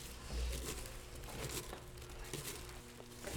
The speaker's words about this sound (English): He was just about asleep when he heard a rustling of leaves and the thump thump of feet. The wolf's feet, that is.